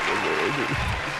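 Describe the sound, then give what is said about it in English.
A steady wash of applause from a crowd, fairly loud and continuous over about a second, with a voice talking faintly underneath. “Let the applause run out,”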